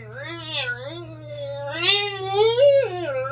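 A chair squeaks in long, wavering squeals that slide up and down in pitch, almost like a violin or a mewing cat, over a steady low hum.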